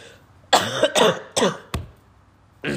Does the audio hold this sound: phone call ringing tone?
no